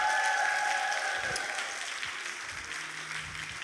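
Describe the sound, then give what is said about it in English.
Sustained applause from an audience, a dense crackle of many hands clapping at steady loudness before easing slightly toward the end, with a faint tone or voice briefly showing through. “Clap for him a little bit more.”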